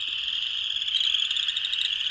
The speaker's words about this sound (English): The upland chorus frog is the one that we get. And it sounds like you take your fingernail and you rub it across the teeth of a comb.